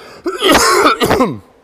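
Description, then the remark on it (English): A single harsh, throaty cough, loud and rasping, tapering into a rough clearing of the throat, with no talking around it. “Another cough coming, sorry.”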